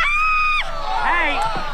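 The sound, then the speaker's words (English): A woman's loud, sustained high-pitched scream gives way to several overlapping voices shouting and yelling at once as a crowd mobs a naked woman, all continuous for under two seconds. “All of these people start to mob this naked woman, which is just so weird. Woman screams!”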